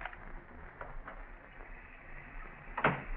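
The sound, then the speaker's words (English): A door leading to a garage is opened, with a few faint clicks of the latch followed by a sharper thud or creak near the end, against a quiet, hissy background with no voices. “Shoot, if I have to open that door and go to the garage.”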